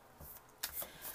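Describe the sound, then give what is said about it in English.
Soft rustle of a deck of cards being shuffled, quick papery riffles and slides in a couple of short bursts, quiet and without any talking. “I'm shuffling right now and just kind of seeing if anything else pops up.”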